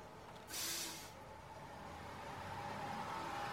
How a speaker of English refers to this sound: Oh, well, look. Here's my bus coming.